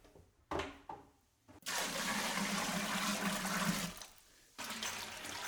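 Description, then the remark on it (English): Water gushes and splashes steadily into a big container already holding four cups of sugar, filling it to just above 5 gallons, for a couple of seconds, then stops and starts again, loud, with a few short knocks before the pour begins. “Now I'm going to add some water.”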